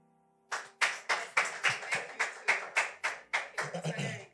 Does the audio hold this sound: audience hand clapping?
yes